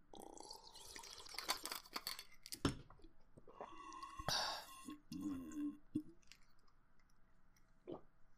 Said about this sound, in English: Okay, let me take a slip of water real quick.